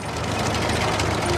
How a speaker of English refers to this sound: Terence is an orange crawler tractor who has caterpillar tracks instead of wheels.